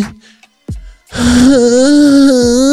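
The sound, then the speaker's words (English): A woman's voice lets out a drawn-out, sultry, heavy-breathing moan that wavers in pitch, imitating a sung Christmas song melody, loud, after a short breathy sound and a pause. “She's breathing mad heavy.”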